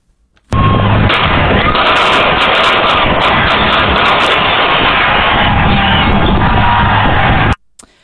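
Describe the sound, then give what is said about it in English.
Gunfire crackles through the loud roar of a large outdoor crowd at the Chiefs' Super Bowl victory celebration, sharp bursts clustered early amid constant shouting and cheering that stays dense for about seven seconds before cutting off abruptly. “Terrifying to hear that gunfire.”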